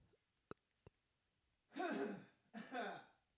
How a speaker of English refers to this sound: Hold on, I need to clear my throat.